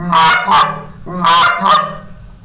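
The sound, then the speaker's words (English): A goose call blown loud in two quick double clucks, each pair of sharp honking notes right next to each other, with a brief pause between pairs and no talking. “It sounds, the double cluck is 2 clucks just kind of right next to each other like this.”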